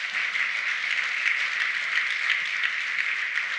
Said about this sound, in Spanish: Si lo quieres dar un aplauso fuerte, Señor.